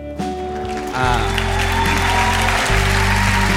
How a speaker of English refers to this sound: Yeah, you can clap for that.